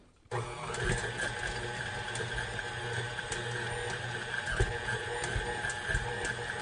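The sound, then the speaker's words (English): A stand mixer on a slow setting starts with a sudden click and settles into a steady motorized hum and whir, with faint rhythmic knocks as the dough hook works through dough, continuous and moderately loud. “To get it to stir around the hook, okay?”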